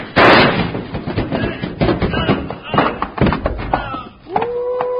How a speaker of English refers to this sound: you knocked him off the top step and he rolled all the way down right at our feet. Yeah, he'll be out for a while, but he'll be all right.